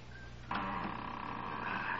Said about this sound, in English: Ah, here goes the lock. Now to open this door without making too much noise.